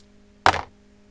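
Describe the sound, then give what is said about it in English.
A 100-sided die drops onto a hard surface with one sharp, fairly loud clack that trails off in a brief rattle, with a low steady hum underneath and no talking. “I'm going to roll his age on 100-sided dice.”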